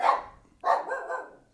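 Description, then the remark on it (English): A dog barks twice, a short bark followed by a longer, drawn-out one that trails into a whining, howl-like tone. No one speaks. “My dog is communicating with the ghost in the corner.”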